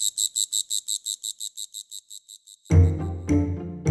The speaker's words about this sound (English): In large part, those noises are in fact courting songs to help two tiny insects find each other in the big wide world. It's to say, hey, I'm here, come find me, I'm really cute, I'm very loud, listen to me.